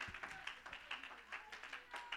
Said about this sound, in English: Oh, somebody clap your hands and give him praise.